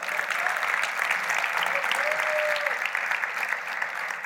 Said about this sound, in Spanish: Podemos darle un aplauso al Señor por su palabra.